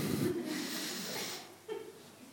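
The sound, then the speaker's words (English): A dog snorts and sniffs at a bowl of cat food in a couple of breathy, rushing bursts, with a short pause before a final sharp sniff. No one speaks. “This is Alfie Dog. And this is a bowl of cat food.”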